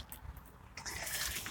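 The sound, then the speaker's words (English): Water being poured into a fountain: a soft, steady, hissing splash that starts partway through and continues evenly to the end, with no voices. “I'm going to put a little bit more water in this fountain while I'm standing here.”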